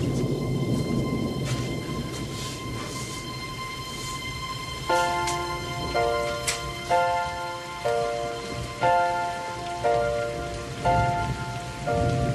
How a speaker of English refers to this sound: Gee, I'm glad it's raining.